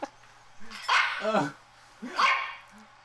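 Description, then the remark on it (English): A pack of about 50 dogs barks in two loud, overlapping bursts, their yaps and woofs piling together into a noisy chorus with a short lull between. “Well, there's like 50 dogs in there, so.”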